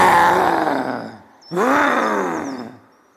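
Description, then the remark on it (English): Bheema raises his hands and lets out two loud, drawn-out roars to scare away a huge monkey, each rising then trailing off, with a brief gap between them and no other sounds. “He raised his hands and let out a huge roar to scare away the animal.”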